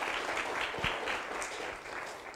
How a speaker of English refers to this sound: Démosle un aplauso. Let's give an applause.